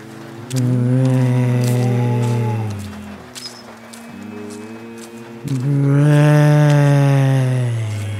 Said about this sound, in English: Do you see the way the cow beside you is sniffing you like you're a tasty bit of grass? Isn't that mad?